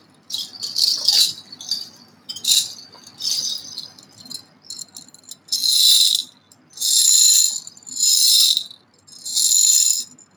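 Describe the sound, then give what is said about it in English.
Bright metallic jingling of nupur ankle bells on the dancing feet of a Baul dancer, first in quick irregular shakes, then settling into four strong, evenly spaced bursts like stamping steps. Loud, with no voices. “What you hear is a sound of dancing feet of the Baul.”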